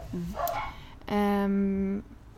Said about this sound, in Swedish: Oj, nu skälls det här med hundarna.